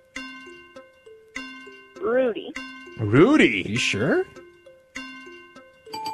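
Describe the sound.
A game show countdown clock, with 15 seconds on it, ticks along with a repeating pattern of short, stepped electronic tones, steady, while a voice speaks briefly over it in the middle.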